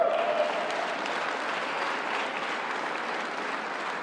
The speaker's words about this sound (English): And because of the investment and incentives we wrote into the law, CS Wind recently announced its employees will receive an end-of-year bonuses as well. You can clap for that, man.